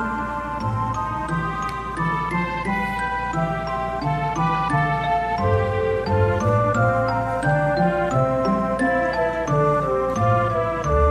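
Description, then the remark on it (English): Chiming bell tones from game music from Seiken Densetsu 3 ring out in a steady melodic pattern over a sustained musical backing, bright and shimmering, with a low pulsing bass beneath and no voices. “Yeah, oh, the bells are nice.”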